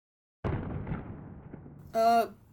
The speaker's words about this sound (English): What was that? Well, that, my little apprentice, was quite literally what I told you was happening. These explosions are filled with unpredictable power.